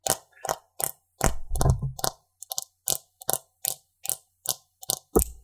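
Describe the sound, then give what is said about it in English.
Fingernails tap on a phone for ASMR, making about a dozen crisp, clicky taps in a steady, slightly uneven rhythm. A few land harder with a dull thump, and no one speaks. “People really seem to like it when ASMR people tap their nails on their phone case or a hairbrush, so we'll do that.”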